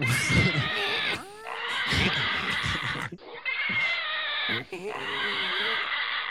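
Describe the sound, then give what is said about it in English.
Loud, shrill pig squeals run almost nonstop, rising and wavering in harsh bursts with only brief breaks between them, piercing, with no talking over them. “You need to play like one of those pig noises.”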